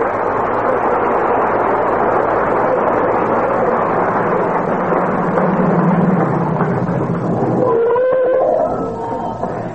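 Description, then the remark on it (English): A loud, steady engine rumble of a car driving up in front of 79 Wistful Vista, then a wavering, high-pitched brake squeal near the end as it pulls to a stop and the noise settles. “But just as we open their show tonight, who should be driving up in front of 79 Wistful Vista, home from their vacation, but Fibber McGee and Molly.”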